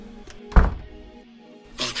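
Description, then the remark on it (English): An office door slams shut with a single heavy thud that rings out briefly before fading, followed by a quieter rustling noise near the end. “Nanami's face immediately ran and grabbed Gojo by the wrist, pulling him away onto his own office, slamming the door behind him.”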